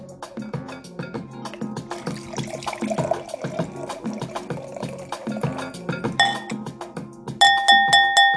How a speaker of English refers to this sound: And definitely, ladies and gents, this wine is very, very good. It has a hint, a finish. Let me pour right here in a glass.